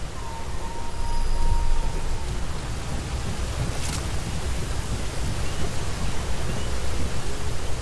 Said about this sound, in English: There's like a thunderstorm that can go on in some zones like at night, so you're like hearing like the rain, like thunder kind of echoing.